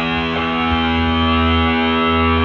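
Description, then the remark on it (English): An electric guitar with its distortion effect turned all the way up drones with a thick, buzzing, saturated tone, sustained and loud throughout with dense harmonics and no break. “Let's give it just all the way. All distortion.”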